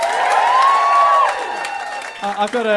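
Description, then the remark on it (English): A live audience at a Do Go On show breaks into loud, sustained applause and cheering, with someone whistling over the clapping. The noise dies down as a voice starts talking near the end. “Give us a round of applause if you've heard Do Go On before.”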